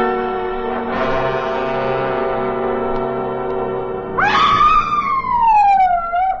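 In the radio drama Affair at Loveland Pass, after a steady droning tone, a woman's loud, high-pitched scream suddenly breaks out, its pitch sliding slowly downward over about two seconds.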